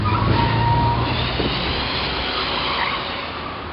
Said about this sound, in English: Are you going to drive faster than this? It's an Eldorado. It builds up speed. It becomes a projectile. Everyone is passing us.